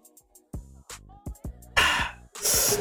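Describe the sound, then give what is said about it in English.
A few small clicks, then several low gulping swallows in quick succession, each followed by a loud, breathy exhale like a satisfied sigh after drinking water. No talking. “Let me get some of this water real quick. My mouth is getting dry.”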